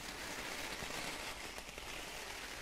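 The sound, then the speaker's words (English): A steady, dense crunching and crackling from a squeezed ball, continuous like heavy rain pattering, fairly quiet with no voices over it. “Listen to the crunchy sounds. Almost sounds a little bit like rain.”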